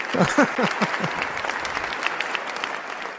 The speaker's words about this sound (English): Sundance Film Festival. I would probably clap for 15 minutes.